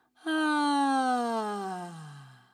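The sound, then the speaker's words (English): A single sung open 'ah' vowel with a big dropped jaw on a low note, like a sigh or a yawn, held for about two seconds and sliding gently downward in pitch, clear before fading out. “Now we're going to do a lower note again, and we're going to do a lovely big drop jaw R sound.”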